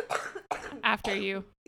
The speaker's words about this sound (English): After you cough up the lung. So sorry.